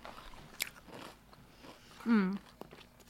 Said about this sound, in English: I'm eating salt and vinegar kettle chips.